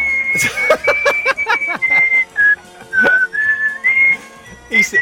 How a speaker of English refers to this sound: Mate, you're good at that. You're good at the whistling. That's very good. Very good, lad.